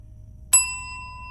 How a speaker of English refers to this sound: I jumped as a loud bell tolled throughout the room, though no one else seemed to share my reaction.